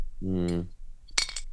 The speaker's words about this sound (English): Sorry, just having a sip of water. But the water you left by your bed all night that you feel like you have to drink.